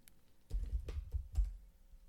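Loud keyboard typing of a Google search: a quick run of heavy clacking keystrokes, several sharp key hits clustered over about a second, then a pause. No voices.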